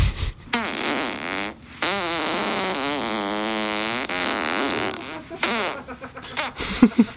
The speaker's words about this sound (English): Not much of a butthole. It's the one that farts a lot.